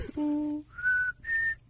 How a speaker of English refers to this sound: Whistle. So good it, really?